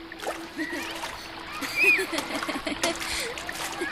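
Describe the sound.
Children splash and play in river water: water splashes and splatters repeatedly, with irregular bursts of churning and dripping, while indistinct young voices call out faintly over a steady low hum.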